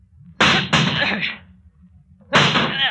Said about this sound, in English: We've got to save him if we can. Break down the door. That's it. Grab that chair.